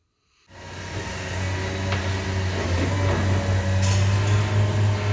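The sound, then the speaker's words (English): A heavy truck engine idles steadily after starting up half a second in, a deep constant rumble with a low mechanical hum, sustained without any voices, at the double-layered gate of the Trans Mountain Pipeline tank farm on Burnaby Mountain. “Trucks must enter through a double-layered gate.”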